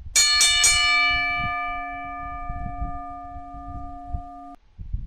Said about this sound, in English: Somebody tell me to ring the bell.